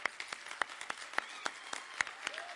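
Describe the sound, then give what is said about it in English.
An audience applauds to honor those who served in the armed forces, a dense patter of many hands clapping at once with sharper individual claps popping out irregularly over the steady wash of sound. “And the rest of us, can we just honor them with a round of applause?”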